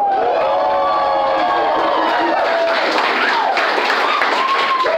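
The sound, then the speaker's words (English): A large crowd of licensed agents claps and cheers loudly and steadily for the whole stretch. Whoops and shouted voices rise above a dense, continuous wash of applause. “Me, the CFO, the broker, and every licensed, man, if you're a licensed in the licensed army here, let me hear you clap it up.”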